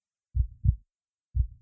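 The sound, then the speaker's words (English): A man's own heart beating, deep and muffled: a soft lub-dub pair of low thumps, then after a pause the next beat begins, steady and alone with no other sound. “it was a large tanker ship motoring by his home on the Washington coast, but the sound was actually his own heart beating.”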